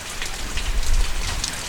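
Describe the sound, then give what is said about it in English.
Steady rain pattering down, a dense, even hiss of drops striking a surface, with a low rumble of runoff underneath and no voices. “We huddled in the service doorway, the rain falling inches from our muzzles as you told me you loved me.”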